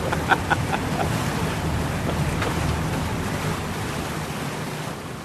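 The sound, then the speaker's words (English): A boat with huge picture windows glides across a still lake with islands, near Mount Gable and the Connemara peaks. Its steady low engine drone runs beneath a constant wash of water and air noise, with a few soft knocks near the start; no one speaks. “The boat has huge picture windows, and the view as you glide along is picturesque, a cliche almost.”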